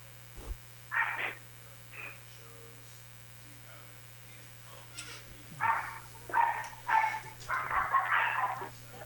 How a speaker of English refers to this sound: Sorry about my dogs. They're a little vocal.